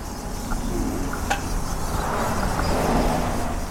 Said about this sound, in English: And we're right by the highway, so there's cars whooshing past.